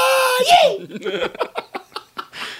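A loud, shrill scream with a crazed edge rises sharply, then breaks into a quick string of choppy, yelping bursts that sound like manic cackling.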